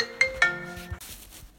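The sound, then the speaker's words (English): A phone ringtone for an incoming call plays two quick bright chiming notes followed by sustained tonal melody lines, clear, then fading into a soft noisy tail with no talking. “He's ringing you again.”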